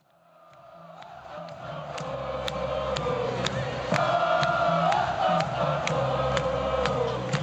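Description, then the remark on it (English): A record-setting crowd of 115,000 people at a 2011 college football game, Michigan hosting Notre Dame, roars and cheers, the noise swelling steadily from a murmur into a sustained, dense wall of voices, with sharp claps and whistles punctuating the din. “Imagine how many respiratory droplets this record-setting crowd of 115,000 people sent into the air in 2011 as they watched Michigan host Notre Dame.”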